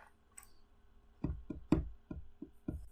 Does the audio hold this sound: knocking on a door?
yes